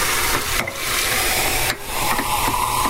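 Cold tap water runs steadily into a cup, a continuous hissing splash with two brief dips in the flow and a faint tone as the cup fills. No one speaks.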